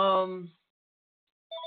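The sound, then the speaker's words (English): A phone ringtone for an incoming spam call chimes with a steady electronic tone, cuts out for about a second, then starts again with a higher, brighter melody. Fairly loud, with no talking. “There go my phone.”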